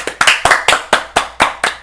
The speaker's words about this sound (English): If it's not too late, nigga, can we get a round of applause for this nigga?